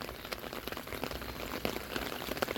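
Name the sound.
pouring rain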